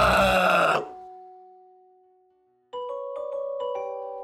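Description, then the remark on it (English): A voice lets out a loud, harsh, rasping screech for under a second, mimicking a creature's cry. Two steady tones linger and fade, then a rhythmic pulsing tonal pattern begins. “Yeah, that trippy screech!”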